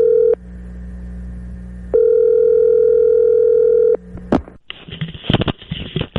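signal or alarm, telephone call dial tone

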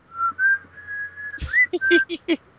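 human body sound, person whistling a tune

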